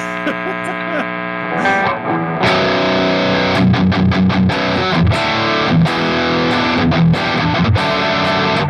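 A steady electrical hum on the amp channel gives way to a loud, heavily overdriven electric guitar played through two boost and three overdrive pedals, thick fuzzy chords ringing out with a series of sharp repeated stabs, saturated, with no talking.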